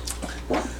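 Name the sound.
sneeze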